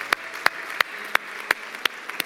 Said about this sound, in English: Can we give these four individuals that raise their hand a huge round of applause? Yeah.